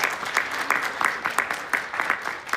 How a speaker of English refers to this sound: round of applause. Thank you.